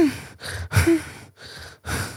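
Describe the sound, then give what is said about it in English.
A person imitates the changed, heavy breathing of someone asleep and dreaming, with four slow, breathy puffs separated by brief pauses, moderately loud, with no other talking. “Breathing. How somebody sleeps. You know when people sleep, their breathing changes?”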